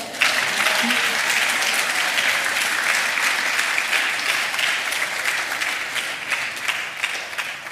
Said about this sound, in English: And if we should clap now.